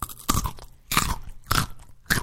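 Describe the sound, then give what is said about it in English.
Four loud crunches of a raw, sweet Texas carrot from Red Rock, bought at a farmer's market, being bitten and chewed, each sharp snap spaced about half a second apart with brief quiet gaps between them. “So you have a crunchy carrot.”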